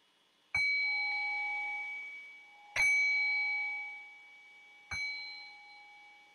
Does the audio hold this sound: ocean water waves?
no